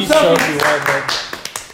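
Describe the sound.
Voices talk and laugh, then a few scattered hand claps ring out near the end, three or four sharp, crisp smacks in an uneven rhythm, fairly loud.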